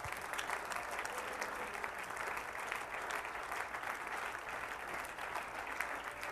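An audience applauds steadily as a hand clap of praise, a dense wash of many hands clapping at once with no clear rhythm, sustained and even in loudness for several seconds.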